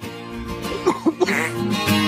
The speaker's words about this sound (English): I said a little bit. I said a little bit when I was coughing.